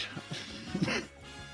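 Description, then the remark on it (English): A few short, rough coughs in quick succession, the last one the loudest and breathiest, followed by quiet. “excuse me, I'm just coughing.”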